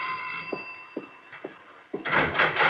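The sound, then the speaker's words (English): A doorbell rings in the late morning during brunch in a sun-filled breakfast room, with a steady, sustained tone while soft, evenly spaced thumps sound beneath it, followed by a louder burst of rattling, rustling noise at the end. No one speaks. “We slept late the next morning, and we were dallying over our brunch in the sun-filled breakfast room, still in our robes and slippers when the doorbell rang.”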